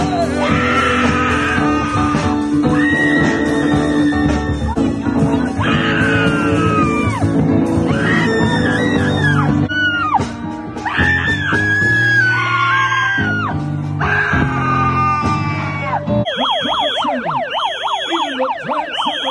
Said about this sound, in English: And you'll hear the left adding in their great discussion. It sounds a little like screaming and whistles, but you'll get it.